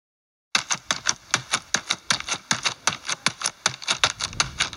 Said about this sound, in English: No, I was hitting the tortilla bag over there.